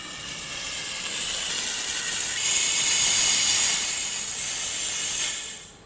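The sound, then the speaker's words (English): A steady, bright hiss of carbon dioxide gas rushing from a canister into a bottle holding incinerator ash mixed with water, swelling slightly in the middle and holding for about five seconds before cutting off. No voices. “And I'm now going to fill the bottle up with carbon dioxide.”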